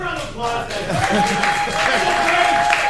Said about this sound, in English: Just give a round of applause.